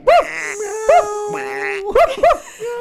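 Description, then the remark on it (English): Several people imitate a dog barking, loud, with short woof-like bursts coming in an uneven rhythm while a steady hummed tone carries on between them. “What should I do? Dog. See, dog. Woof, woof.”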